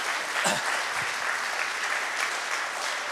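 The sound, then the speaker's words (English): Steady audience applause for the setup, breakdown and tech team fills the whole stretch, a dense even patter of many hands clapping at a fairly loud level, with no voices rising above it. “And by the way, I want to just give a quick round of applause to those people that work so hard.”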